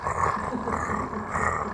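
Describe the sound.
A person imitates a cat's purr with a steady, throaty rumbling sound held continuously for a couple of seconds, fairly loud, with no words spoken.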